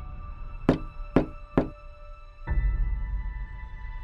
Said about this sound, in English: A knock on the door. I remember a knock on the door around 1:15 time frame, and I got up and I opened the door, and there was the sheriff,